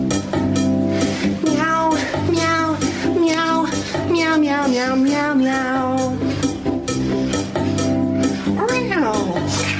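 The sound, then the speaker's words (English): A voice imitates a cat's meowing in repeated, sing-song meows over a loud, steady musical backing with a regular beat, continuing throughout, played as a snippet from a phone. “So obviously that's a long-winded version, and it's normally just the start, the meow, meow, meow, meow, meow, and it fucking works prime.”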